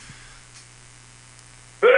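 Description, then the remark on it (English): A steady low electrical hum runs under near-silence, then a sudden loud, sharp sneeze bursts in right at the end and is cut off. “Bless you.”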